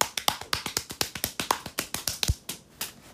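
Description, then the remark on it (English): A quick drum roll of sharp, crisp taps, about twenty hits in a steady rapid patter lasting two seconds, capped by one heavier low thump before falling silent. No voices. “Drum roll, please!”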